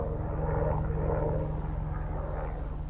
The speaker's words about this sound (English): It's actually good it's not a regular day, because usually there's so many helicopters kind of like, hold for a helicopter.